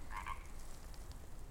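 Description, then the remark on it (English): In the Wallawas, a single frog apart from the group croaks with a short, raspy double call, followed by a low background chorus of other frogs murmuring steadily underneath. “See, that guy over there that's still croaking, is that what we should call it? He's not in the collective.”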